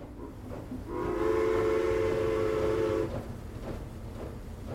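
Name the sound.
steam train with whistle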